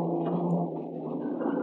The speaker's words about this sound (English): I gun through the town, then ditch my car at the far end behind one of the buildings.